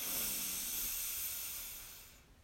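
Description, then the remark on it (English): A single long, airy inhale, a last deep breath in during a guided breathing exercise, drawn in steadily for about two seconds, soft and breathy with a hissing quality, then tapering off into quiet. No one speaks. “One last breath in. Breathe in.”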